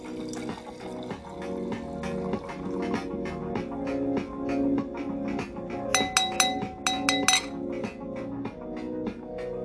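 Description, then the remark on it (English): Sangria pours steadily into a glass, with a few bright clinks of glass against glass partway through. Fairly clear, with no talking. “So let me pour my glass.”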